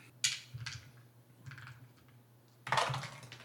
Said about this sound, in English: Darn it. The dice got stuck in the tower.